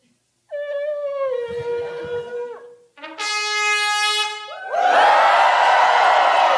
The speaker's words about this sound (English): And then there was the shout.